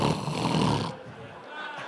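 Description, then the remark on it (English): A man voices a loud, rasping snore, one raspy drawn-out breath that rattles for about a second, then trails into a softer, breathy rumble. “He would be praying, I'd be snoring.”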